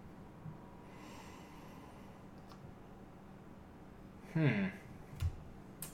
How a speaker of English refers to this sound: And so guys, let's go ahead and take our first sniff of Bulleit Bourbon. Yes, and this is regular bourbon, not the rye or the 10-year.